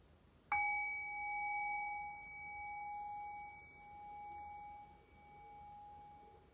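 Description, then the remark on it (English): A single meditation bell is struck once to begin a brief loving-kindness practice and rings out clearly, its bright, shimmering tone sustaining and slowly fading over several seconds with a gentle wavering pulse. No one speaks. “So I'll ring the bell and I'll guide us through this very brief practice of loving kindness.”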